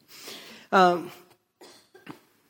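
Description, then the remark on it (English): A loud cough from a speaker with allergies, right into the microphone, an abrupt harsh burst followed by a breathy tail, with a couple of smaller throaty coughs and clearing sounds after it. “Excuse me, my allergies got a little bit coughing, so I'm sorry that's... Every time I cough, it's in the microphone, so you have to listen to it.”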